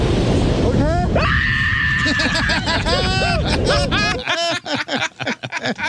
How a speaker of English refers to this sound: That is a scream that is attached to I am skydiving and I didn't realize it. That's probably a late 20-something year old reverting to a 3-year-old girl.